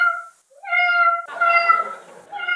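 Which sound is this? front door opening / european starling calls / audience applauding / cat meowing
cat meowing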